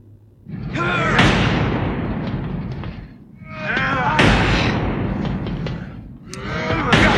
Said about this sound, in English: So they're trying to use this, like, war car to break the door open. But it's not, of course, working very well.